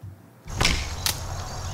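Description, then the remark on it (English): An arrow is loosed from a bow at stacked hay bales 12 meters away with a sharp snap, and a second brief whooshing crack follows about half a second later as it goes over the hay into a wooded area, over steady outdoor background noise. No one speaks. “I just lost an arrow. God damn it. He missed the hay. It went over the hay and into a deeply wooded area behind.”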